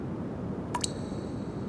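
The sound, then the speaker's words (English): A single drop of rain lands with a quick rising plink and a short bright ring, standing out over a steady low background hum; no one speaks. “Another drop of rain.”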